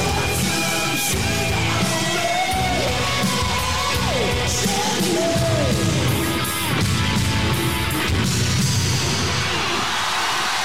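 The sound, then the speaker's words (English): A roaring concert crowd cheers, yells and whoops continuously, with rising shouts cutting through a dense wall of applause that stays loud throughout. “Oh, hear that. Thunderous applause.”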